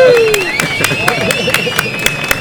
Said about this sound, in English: Hey, that deserves a round of applause for you, sir.